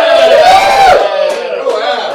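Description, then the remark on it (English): A burst of loud cheering and whooping from a live audience at a show recorded live from Dixie headquarters, with a few high shouts standing out. It stays strong for about two seconds. “I think that's a livelier crowd than at Adam Witten's Mountaineer Talk.”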